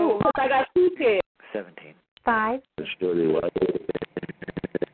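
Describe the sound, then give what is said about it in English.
Short electronic phone-dialing tones beep in quick bursts over a narrow, telephone-like line, interspersed with warbling, voice-like sounds. The tones come in an irregular rhythm and are fairly loud. “Somebody's phone is bubbling. Your phone messed up.”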